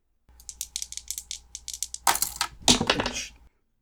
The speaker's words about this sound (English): That's one hell of a dice roll. That's a 5 and a 3 for an 8.